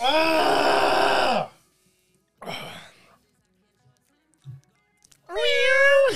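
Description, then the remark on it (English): A cat meows loudly three times, with long drawn-out wails separated by short silences, the last rising and falling in pitch. “I'm hearing cats.”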